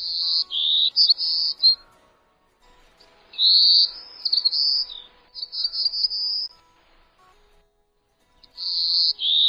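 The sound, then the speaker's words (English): An endangered golden-cheeked warbler (Setophaga chrysoparia) sings three separate high, buzzy phrases with brief pauses between them, clear against an otherwise quiet background. “It's today's featured feathered friend, Cetophaga chrysoparia, the beautiful and endangered golden-cheeked warbler.”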